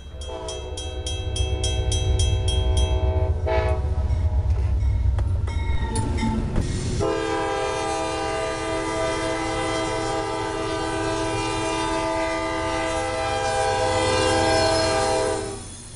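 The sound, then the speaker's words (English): A train's horn blares loudly and steadily over the deep rumble of a train at a US railway station opened in 1918, its tone shifting partway through before holding on until the end, with no voices. “Sadly, few of those millionaires appear to take the train, as the station opened in 1918 was used by only 16,400 passengers in 2015.”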